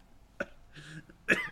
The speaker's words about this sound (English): Guys, you know what's going to get people to really listen to this podcast? Just like wheezing and wet coughs.